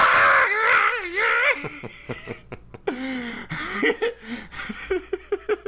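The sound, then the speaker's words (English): A man's voice imitates high-pitched screaming, starting with a loud, wavering shriek, then breaking into choppy, gasping bursts and strained cries, with no other talking. “Yeah, it's just the fat guy screaming.”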